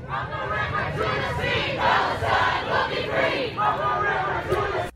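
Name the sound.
protest crowd chanting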